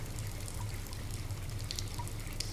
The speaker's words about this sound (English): The water's still running. It's kind of soothing, actually.